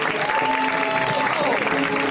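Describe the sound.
A crowd claps in a steady, loud round of applause for about two seconds, with a few voices cheering and whooping over the dense clatter of hands.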